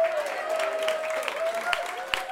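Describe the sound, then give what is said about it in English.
An audience applauds steadily to welcome a comedy singing act billed as the First Lady, a dense wash of many hands clapping at a moderate level, with a few sharper claps standing out and a faint sustained tone running underneath. “Let's have a round of applause for the First Lady.”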